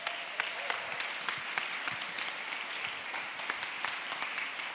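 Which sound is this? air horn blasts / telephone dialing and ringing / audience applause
audience applause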